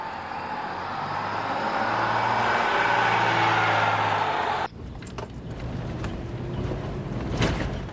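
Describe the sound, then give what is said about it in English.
A car rumbles steadily along a rough road, then the noise shifts abruptly to a bumpy stretch of knocks, rattles and jolts as the wheels hit potholes in the road. “Are you trying to hit every pothole in this road?”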